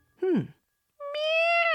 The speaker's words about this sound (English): Meow! She heard the same sound. A cat? I think you're right, Arya. There seems to be a cat somewhere out there, she said.